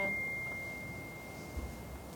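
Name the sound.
phone ringing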